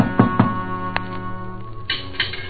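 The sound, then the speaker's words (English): A couple of quick knocks on the front door of a house near the start, followed by another single rap, all heard over a steady background of sustained music with no one speaking. “No one answered the door, but I heard someone in the back.”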